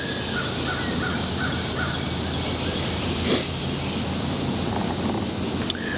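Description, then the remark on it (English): A crow caws several times in quick succession in the early morning before sunrise, fairly faint, over a steady outdoor hum and a continuous high-pitched drone, with no one speaking. “You hear the crow?”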